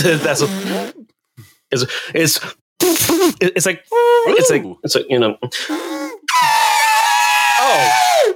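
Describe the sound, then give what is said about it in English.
A voice imitates farts with a run of short, sputtering, squeaky bursts that rise and fall in pitch, ending in a long, high, wavering squeal. No words are spoken. “Your Foley work is on point this episode.”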